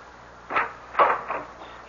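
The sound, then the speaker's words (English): A door being opened: a few short clunks and rattles spaced about half a second apart, moderately quiet, with no one speaking. “I wonder if the door will open for me.”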